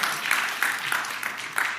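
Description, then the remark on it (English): A church audience claps for the musicians, a dense, steady patter of many hands at moderate loudness with slight swells, and no voices over it. “Yeah, you guys can clap.”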